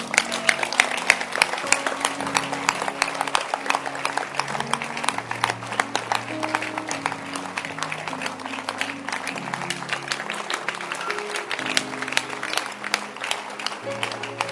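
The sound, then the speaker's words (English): An audience at a church service claps steadily for about fifteen seconds, a dense, even patter of many hands, with a low sustained tone running underneath throughout. “Can you clap your hands again?”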